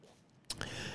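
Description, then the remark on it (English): Someone drinks water: after a near-silent moment, two quick wet clicks are followed by a soft, steady slurping hiss. No one speaks. “It's time for water now because my mouth doesn't taste real good.”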